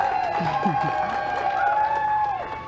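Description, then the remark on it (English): A small crowd cheers and claps steadily for NASA astronauts Bob Behnken and Doug Hurley as they come out waving, a dense wash of voices and applause at moderate loudness, with a few raised shouts rising above the noise. “Small crowd, but big cheers.”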